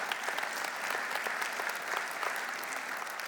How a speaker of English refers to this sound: And you can clap.